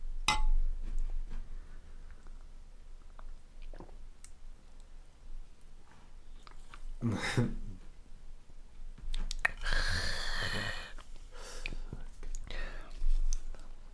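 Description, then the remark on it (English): Glasses of vodka shots clink together in a quick toast, a bright ringing tap near the middle, surrounded by soft whispers, rustling and muffled movement. “Guys, let's cheers real quick.”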